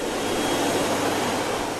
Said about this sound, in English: An electric foot dryer. It looks just like a hand dryer, except that it's placed near the floor at an angle comfortable to dry your feet.